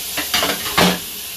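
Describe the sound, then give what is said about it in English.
Sounds of dishwashing: a few short bursts of splashing water and scraping against dishes, over a steady faint hiss, with no talking. “Bear with me, washing dishes, bear with me.”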